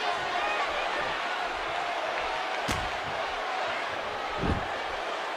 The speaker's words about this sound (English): Oh, another power slam. Ted DiBiase goes for the pin.